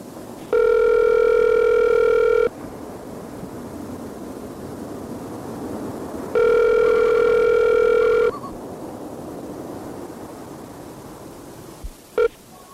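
A phone line's ringing tone sounds twice, each burst steady and about two seconds long, separated by a pause of faint background hiss, then a brief click as the call connects.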